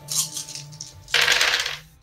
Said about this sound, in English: Roll dice. Make a might roll.